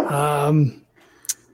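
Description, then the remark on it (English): A single drawn-out, voiced bark, loud, that sounds like a person imitating a dog. It is followed by a short pause and a faint click. “It barks once.”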